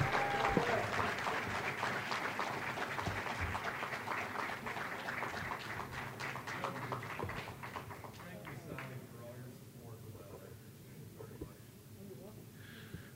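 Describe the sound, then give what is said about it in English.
An audience applauds the new White Cane Bulletin editor as he stands, with dense, steady clapping for several seconds, then the applause gradually thins and fades toward the end. “I will tell him to stand up and take a round of applause as our new White Cane Bulletin editor,”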